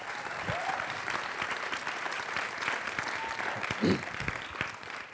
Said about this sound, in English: Will you please put your hands together and welcome David as he comes to the stage.